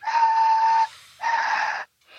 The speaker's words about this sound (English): Throat whistle.